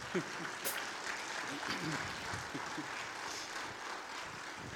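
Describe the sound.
A steady round of applause from a crowd, dense continuous clapping with a few faint voices mixed in, holding at an even level throughout.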